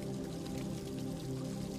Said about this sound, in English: In the center of it, there is a tranquil fountain, and you can hear the sound of the water trickling soothingly. You sit by the stone side of the fountain and listen to the gentle melody of the water.